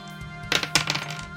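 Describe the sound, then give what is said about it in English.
Dice clatter across a hard tabletop in a quick burst of sharp clacks that tumble and settle within about half a second, with no voices. “Okay, good dice today. That's a 9 plus...”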